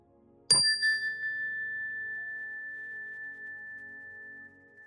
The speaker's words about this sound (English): We'll begin the meditation with the ring of the chime and end the meditation with the ring of the chime.